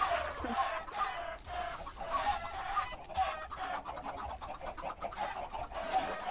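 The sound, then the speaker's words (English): A flock of chickens clucking and squawking continuously, many overlapping calls forming a busy, fairly loud chorus, with no speech. “These poor chickens.”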